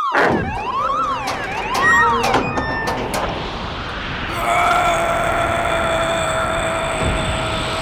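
A loud electronic door alarm blares, first with rising and falling wailing sweeps, then settling into a steady, piercing continuous tone, with no voices.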